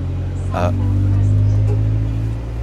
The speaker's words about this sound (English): Anyway, it's going to Turnpike Lane, this bus. And it's taken us all the way home.